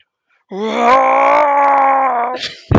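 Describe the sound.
A man imitates a bear with one long, steady, low groaning growl lasting about two seconds, loud and droning, ending with a short breathy exhale.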